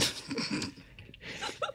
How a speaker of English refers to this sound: He's a big sneezer, trying to get something out now. So he, it seemed like he was trying to get something out of his nose.